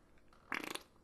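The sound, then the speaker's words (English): A short, sputtering fart rips out in a quick burst of rapid flapping pulses, lasting about a third of a second, fairly loud against a quiet background with no talking. “Apparently so with your farts.”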